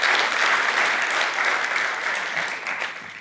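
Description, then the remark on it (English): A crowd gives the Lord a clap one morning, clapping together in a dense, steady burst of applause that stays loud throughout, then begins to thin slightly toward the end. No voices stand out. “If you believe that, give the Lord a clap this morning.”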